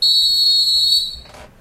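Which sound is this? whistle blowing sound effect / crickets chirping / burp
whistle blowing sound effect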